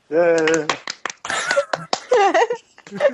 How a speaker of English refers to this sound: I'm just going to clap for everyone.